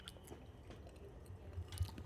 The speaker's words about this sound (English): So I took an extra gulp for that one. I heard you swallowing kind of deep.